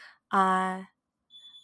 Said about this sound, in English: I'm so sorry, my alarm at my house is popping off right now.